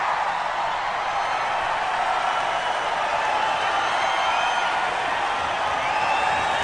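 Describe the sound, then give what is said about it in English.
A live concert audience on a live album recording cheers in a steady, dense roar of voices that holds at an even loudness throughout, with faint high whistles and whoops threading through the noise. “I think they're about to cheer. There it is.”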